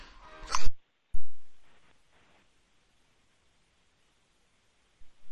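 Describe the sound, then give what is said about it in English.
Two sneezes in quick succession, the first a sharp, bright burst and the second a softer, breathy one, followed by a few seconds of quiet with no talking. “Two sneezes, man. Excuse me.”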